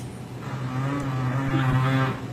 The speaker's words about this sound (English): That was a big sweet fart right there. That's dookie. What the fuck was that? Sounds like he has a clicker in his ass.